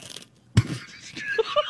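A loud, sudden crunch of someone biting into crisp, vinegary food, followed by a second or so of fainter crackling as the bite breaks apart, with no talking.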